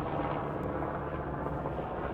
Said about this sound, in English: It's an immersive experience. You could hear the helicopter traveling. What, south? It's going from south to north. It's going north. It's going in one ear and out the other. Stereo recording.